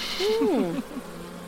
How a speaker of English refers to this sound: You've got a bee on your boob. Have I? Bee boob.